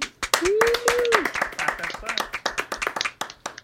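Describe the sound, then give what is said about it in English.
A short round of applause from a few people, sharp, uneven claps continuing throughout and thinning toward the end, with a voice briefly calling out in a rising, sustained tone near the start. “Yo, can we get a round of applause for that?”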